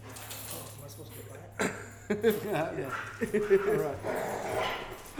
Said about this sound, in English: All right, well, the dogs are here, so I think we're good, man.